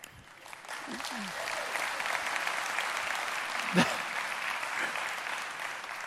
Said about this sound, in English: That's a good time to clap there.